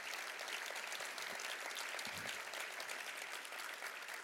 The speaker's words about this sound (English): So please join me in a round of applause again for Rebecca Huntley.